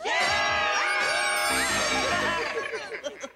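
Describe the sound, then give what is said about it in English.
Several people scream and whoop together, a loud, dense burst of overlapping high-pitched yells that holds steady for a few seconds before breaking into scattered shouts. “Good screaming, everybody.”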